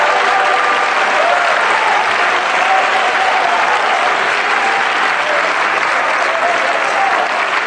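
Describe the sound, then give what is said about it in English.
An audience claps loudly and continuously and shouts unto God, a dense, steady wash of hands with raised voices blended into the noise, for several seconds without a break. “Somebody clap your hands and shout unto God.”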